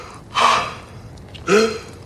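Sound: heavy labored breathing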